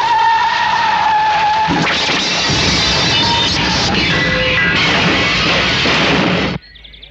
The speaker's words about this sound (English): Out of control, the car careered off the mountain road.